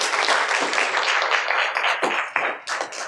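An audience gives a round of applause for the Wichita Public Library, dense, steady clapping for a few seconds, thinning into scattered claps toward the end.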